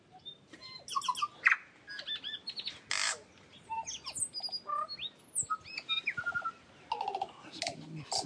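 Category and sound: bird, bird singing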